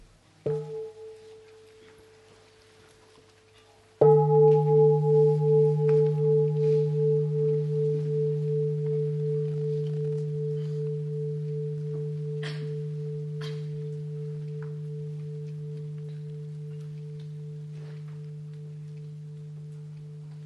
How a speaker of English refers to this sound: In our practice center, and in many other practice centers, when you hear the bell, you stop your thinking about the future, about your project, about your business, and you begin to breathe in order to bring your mind home to your body.